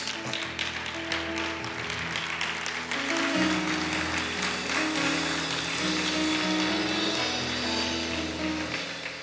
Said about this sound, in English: Stand to your feet. Stand to your feet. Let's clap for the Lord. I'm finished preaching. Clap for the Lord. He's worthy of praise.